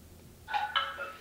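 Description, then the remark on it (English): A pet bird calls out with two or three harsh, squawking notes in quick succession, fairly loud, with no voices around it. “My bird needs to get its beak trimmed.”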